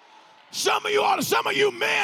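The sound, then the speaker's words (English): A man's loud, raw bellowing shout bursts in after a quiet moment during a worship service, sustained and strained with rising and falling pitch, forceful amid noisy surroundings. “He's shouting it down over here right now.”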